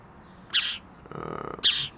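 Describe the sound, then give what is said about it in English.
Two bright, sharp bird chirps about a second apart, with a buzzy rattling trill between them, clear against a quiet background. “Hey, bird.”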